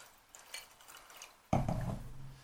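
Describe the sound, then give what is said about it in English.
Whisky being poured into two glasses, half in each: a few faint glassy clinks and trickles, then a louder, steady gurgling pour begins halfway through and runs to the end. “We're just pouring them out now.”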